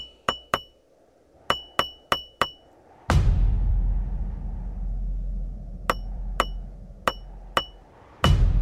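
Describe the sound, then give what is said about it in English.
Sharp, ringing hammer strikes chip at rock to extract a lizard fossil in quick clusters of taps, while a deep, loud rumble of the ground shaking swells up underneath partway through and continues to the end. “Good thing I brought a hammer.”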